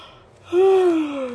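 A single drawn-out yawn, close and fairly loud, starting with a sharp intake and sliding into a voiced, gently falling tone that trails off after about a second.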